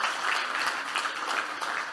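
A crowd applauds steadily, many hands clapping in a dense, continuous patter at an even loudness, with no one speaking over it.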